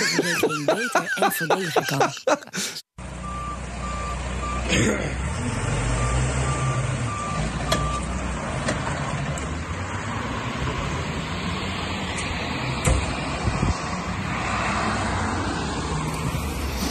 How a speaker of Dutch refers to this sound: Ja, wat denk jij dat je daar zojuist hoorde? Het klinkt als een vrachtwagen die achteruit aan het inparkeren is. Ja, klopt. Het heeft ermee te maken.